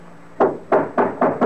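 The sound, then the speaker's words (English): Five firm, loud knocks on a wooden door, coming in a steady, slightly quickening rhythm after a brief quiet moment, with no voices. “Open the door, or I'll break it in.”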